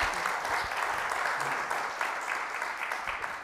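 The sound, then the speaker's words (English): A church audience applauds steadily to welcome a couple, a dense patter of many hands clapping at a fairly even level throughout, slowly easing off toward the end. “And could you all give them a warm round of applause to welcome them?”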